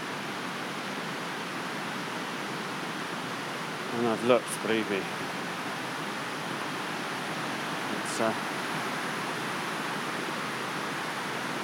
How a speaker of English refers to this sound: It is just a series of beautiful steps. You hear the roar of it. Hundreds of mini waterfalls. I'm guessing they're all natural. They don't look man-made.